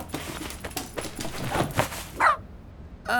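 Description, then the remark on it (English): A dog named Buster gives a couple of short, sharp barks while fetching a pillow on the command "pickle", the second bark clipped at the end, with rustling and shuffling movement filling the space before them. “He's the best dog ever.”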